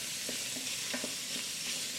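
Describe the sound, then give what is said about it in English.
Steady, hissing sizzle of ground beef frying in a hot pan, fairly loud, with faint scraping stirs now and then and no talking. “I'm going to throw in my beef here. You might have heard that. I don't know if you can hear the sizzle.”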